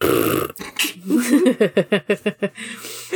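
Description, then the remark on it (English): A person blows a wet, sputtering raspberry with the mouth, imitating a fart: a quick burst of pulsing flaps that slows and fades over about two seconds, loud. “What if he summoned his spear and it was a fart noise?”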